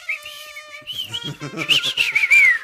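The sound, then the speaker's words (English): A person whistles a wavering, high tune across a few seconds, the pitch sliding and rising toward the end, with muffled voices or rustling underneath partway through. “what's the whistle? Do the whistle”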